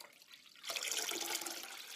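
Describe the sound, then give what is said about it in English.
Water pours steadily into a glass bowl of water, topping it up, after a short quiet moment, a bright, hissing splash that starts abruptly and continues until the end, with no talking. “And all we're going to do is take a glass bowl of water, making sure I've topped it up.”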